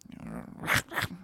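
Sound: person imitating a dog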